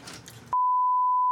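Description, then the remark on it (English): A brief burst of muffled noise cuts abruptly into a loud, steady, mid-pitched censor bleep that holds one unbroken tone for nearly a second. “Please bleep that.”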